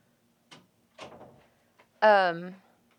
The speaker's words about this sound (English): I need to shut this door. I completely spaced that thing. Go ahead and shut it. I'll wait.